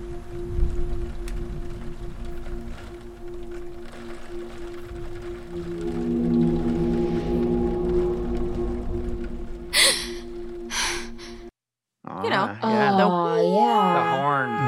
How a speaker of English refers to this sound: That's a combination of about 8 different horns. So there's a boat horn in there. There's a train horn.